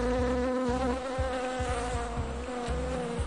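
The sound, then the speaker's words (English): A bee buzzes steadily, its droning hum wavering in pitch for a few seconds with no voices or other sounds. “It's honey, and it's made by bees.”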